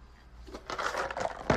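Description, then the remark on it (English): Mount Gay rum is poured into a glass in a short, gurgling burst with a few bright clinks, ending in a sharper knock. No one speaks. “hold on, let's get a nice little pour. I'm enjoying some Mount Gay rum.”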